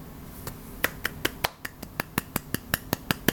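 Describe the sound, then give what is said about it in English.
A single person gives a small round of applause for their own 8th-grade self: about fourteen sharp, evenly spaced claps in quick succession, fairly quiet, with no voices. “That's my little round of applause.”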